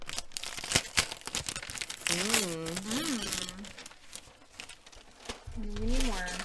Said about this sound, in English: Now we're going to tear the wrapping paper.